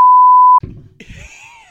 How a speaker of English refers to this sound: You know what I'm going to do? I'm going to go back and I'm going to bleep that.